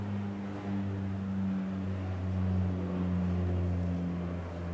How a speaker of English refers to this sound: I'll just wait for the plane to go.